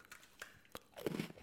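Someone bites into a caramel kettle corn-flavored Oreo cookie with a few sharp crunches, followed by a dense burst of chewing crunches toward the end. No one speaks.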